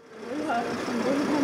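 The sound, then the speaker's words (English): A bus engine idles with a steady rumble in Kyiv as a group of around 25 mothers boards, indistinct voices murmuring, the noise holding constant throughout the short stretch. “The group of around 25 mothers boards a bus in Kyiv, the start of a days-long journey through several countries to reach Russia.”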